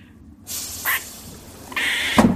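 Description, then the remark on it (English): An emergency door is pushed open, releasing a loud rushing hiss of air with a couple of rattling bursts and a solid clunk near the end, with no voices. “All right, I got the door.”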